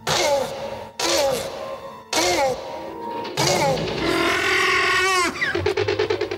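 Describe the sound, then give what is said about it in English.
A velociraptor bark built from mating tortoise calls: three loud, raspy, honking barks, then a longer wavering shriek that breaks into rapid stuttering croaks at the end. “It is a tortoise having sex.”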